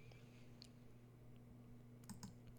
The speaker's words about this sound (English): But yeah, let's go look at the analytics. If you hear my mouse clicks, I apologize.